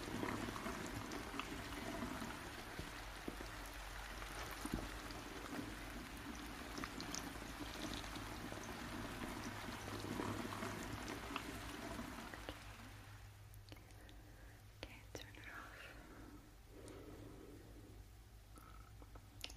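Water pours steadily onto hair to make it a little wet, not to wash it, in a continuous splashing rush, then eases into quieter trickling and dripping for the last several seconds. No one speaks.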